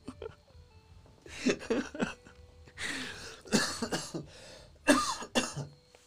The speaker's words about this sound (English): I need to work on this cough, man. Fucking dying. Nah, it's from smoking too much.